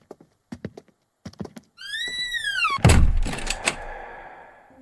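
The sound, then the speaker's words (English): A few light clicks, then a door creaks on its hinge as it swings and lands shut with a single heavy thunk that rings briefly before fading. “The rest of the doors stay open. Why not this one?”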